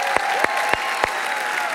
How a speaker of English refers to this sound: Let's do a big round of applause for our Salina Prosper campus.